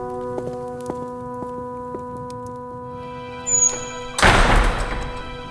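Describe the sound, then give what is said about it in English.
Heavy doors close near the end: a brief creaking scrape, then a loud, deep thud that rumbles on briefly, all over a steady, humming musical drone. “Close the doors, friends. We will leave you here until you knock, Wraith.”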